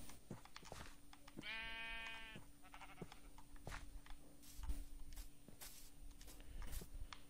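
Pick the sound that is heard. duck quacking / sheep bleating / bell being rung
sheep bleating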